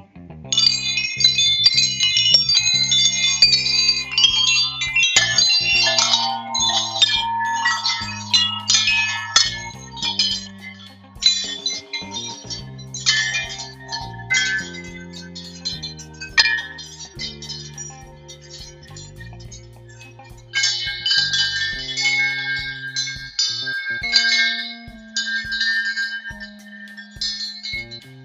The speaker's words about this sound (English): Like me sitting out here enjoying these chimes. Let me bring you a little closer. Listen.